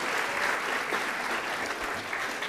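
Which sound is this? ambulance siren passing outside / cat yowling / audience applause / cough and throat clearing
audience applause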